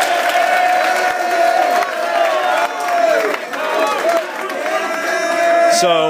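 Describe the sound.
A crowd breaks into sustained applause and cheering for football players being honored for 4.0 grade averages last semester, loud and steady for several seconds, with high whoops and shouting voices rising over the dense clapping.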